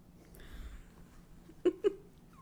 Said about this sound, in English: What is going on with these cats today?